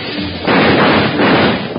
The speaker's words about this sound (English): While Bill and Jingles were searching through the train for the bank robbers, when they opened the door to a dark vestibule and sudden gunfire crashed around their ears.